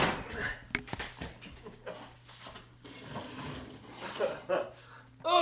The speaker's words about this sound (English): Sorry, my chair just collapsed. Oh, goodness. Underneath me, so.